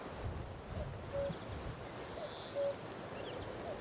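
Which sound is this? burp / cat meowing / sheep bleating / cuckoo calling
cuckoo calling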